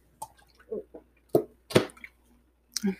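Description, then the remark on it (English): Wet sipping sounds from a drink of black cherry flavored sparkling water, a handful of short slurps and small liquid clicks spaced irregularly over a few seconds, with no talking. “I've been drinking this stuff called Black Cherry Flavored Sparkling Water.”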